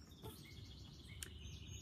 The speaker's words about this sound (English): Good morning, y'all. The birds are singing and welcoming you to a new day.